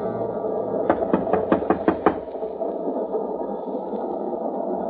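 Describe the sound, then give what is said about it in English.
A quick, evenly spaced run of about seven firm knocks on a train compartment door, loud, over a constant low rumbling background; no one speaks. “Open up or I'll break the door in.”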